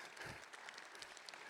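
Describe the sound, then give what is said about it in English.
An opera audience claps at an evening marking the company's 10th production of Butterfly in its 52-year history, a steady, dense patter of many overlapping hand claps, moderately loud and even throughout, with no voices standing out. “Yes, a little applause for that.”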